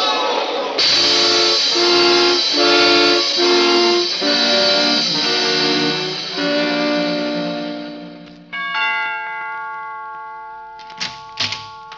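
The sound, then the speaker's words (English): A loud train whistle blares for several seconds over pulsing chugs and steam hiss as the train comes toward a man running along the tracks, then shifts to a different whistle tone that slowly fades, ending with a few sharp clanks. “Stan, look out. There's a train coming.”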